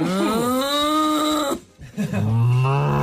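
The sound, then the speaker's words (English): A human voice imitates a cow's moo with a long, strained, wavering low bellow, then a brief pause, followed by a second drawn-out groaning moo, loud. “That's a cow in labour”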